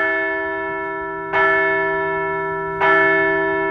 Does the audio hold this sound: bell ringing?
yes